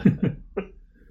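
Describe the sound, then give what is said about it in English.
A quick run of three short, forceful sneezes: two close together, then a brief pause before a third. Each burst is sharp and breathy, with no talking. “Bless you.”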